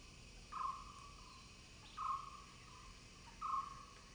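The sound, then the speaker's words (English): Quiet jungle ambience: a soft, steady wash of background noise with a buzzing, droning insect call that rises three times at even intervals, each lasting about half a second. “I think the sound of the jungle is refreshing and almost like entering into a different Vergence. It buzzes around you and you feel kind of free of this trapped space.”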